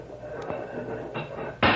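A few mechanical clunks build to a loud, bright latch-and-hinge clatter as the back doors of a truck are unlatched and swing open, with no talking.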